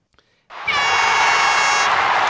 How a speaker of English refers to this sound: It is a name picker. What I'm going to do is spin it. The 16 names are on there. You can hear the little spin. There's a little cheer that happens at the end for the coach.